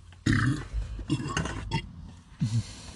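A series of loud burps: a long rumbling one, a couple of shorter croaky belches, then a final deep burp after a brief pause, with no talking.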